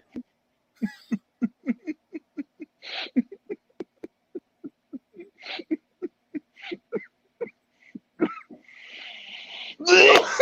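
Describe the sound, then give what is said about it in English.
A long coughing fit: a rapid, steady string of short hacking bursts that keeps going for several seconds, then ends in a loud, harsh, rasping cough. “I coughed and I hit the fucking camera button to mute it.”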